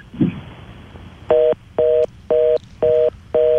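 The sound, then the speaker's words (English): Five even telephone beeps pulse at a steady rhythm, the tone a phone line gives after a call is hung up. They are clear and fairly loud, with a faint bump before them and no talking. “I think one of his kids might have just hung up the phone for him right now.”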